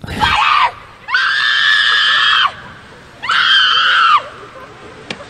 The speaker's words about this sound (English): I don't think it's appropriate to have her screeching